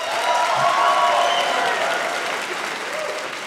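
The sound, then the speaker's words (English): A crowd claps steadily for several seconds, the audience members who don't have kids applauding when asked, a dense sustained wash of applause from many hands that fades slightly toward the end, with faint murmuring voices mixed in. “Round of applause if you don't have kids.”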